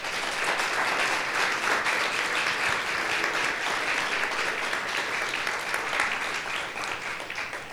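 Steady audience applause fills the whole stretch, a dense, even patter of many hands clapping at a constant level with no voices breaking through.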